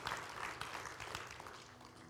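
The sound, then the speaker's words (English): A church audience applauds King Jesus during a morning service, a dense wash of many hands clapping steadily throughout, fairly soft, with no speech over it. “Why don't we give a big round of applause to King Jesus?”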